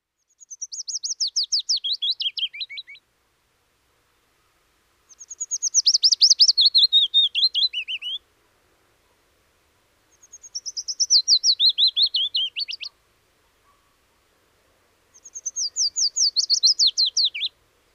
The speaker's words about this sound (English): The willow warbler is a bird that not many people have heard of, let alone heard, yet the silvery, shivering song of this tiny leaf-like sprite is the accompaniment of the burgeoning of spring.